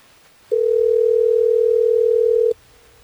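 A telephone tone from an outgoing call placed on air by a Hot 101.5 radio show: one steady, loud electronic hum that holds for about two seconds, then cuts off, with no voices.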